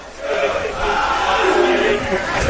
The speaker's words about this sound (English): And the crowd getting into it here with 10:55 to go.